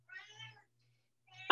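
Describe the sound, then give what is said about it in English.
A cat meows twice as it enters a room, a drawn-out harmonic cry followed after a short pause by a second, louder meow that ends abruptly. “Excuse me. There's a cat.”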